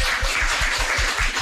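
A steady burst of audience applause, a dense, even wash of many hands clapping at once with no voices, holding at a constant loudness throughout.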